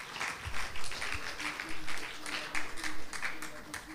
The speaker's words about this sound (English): Somebody clap your hands as you're seated tonight.